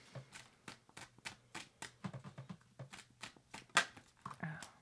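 A deck of cards being shuffled after a card is put back into it, a quick run of crisp, papery riffles and taps with one sharper snap near the end and a low hum underneath.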